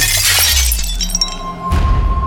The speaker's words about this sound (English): All the jars smash to the ground.